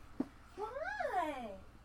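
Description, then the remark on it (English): A male cat lying by a bedroom door, wanting to be let out, lets out one drawn-out meow that rises and then falls in pitch, clear, preceded by a brief soft tap. “Oh, he was sleeping on my bed, but now he's laying by my door, murping at me.”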